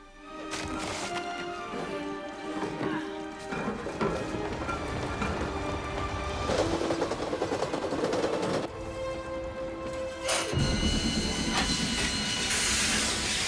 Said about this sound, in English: And the train is real, but the sparks are not. And neither is anything in the background there. This is just a train out in the middle of the desert. Once again, in Jordan. Yes, in Jordan.